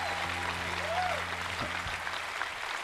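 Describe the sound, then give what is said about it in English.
Audience applause, a steady wash of many hands clapping at even loudness throughout, with a faint whistle-like tone rising briefly above the clapping. “You're clapping.”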